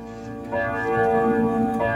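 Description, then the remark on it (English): A grandfather clock chimes with rich, sustained bell-like tones that swell in after a brief quiet start and ring steadily and fairly loud, with no voices. “It is a grandfather clock.”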